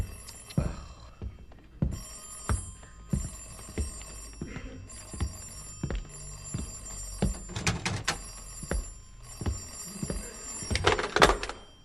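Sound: telephone ringing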